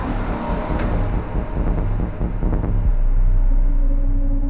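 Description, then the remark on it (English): A steady low rumble of a car driven very fast through the streets of Maddamia toward a field hospital, heavy, with engine drone and bumps of road noise building slightly louder toward the end. “And while he was driving through the streets of Maddamia, I was watching the same scene all over.”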